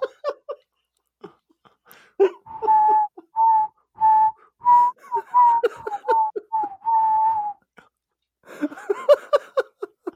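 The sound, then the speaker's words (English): A person whistles a run of about nine sustained, steady notes in an even rhythm, fairly loud, framed by soft breathy sounds and clicks before and after. “No amount of whistling.”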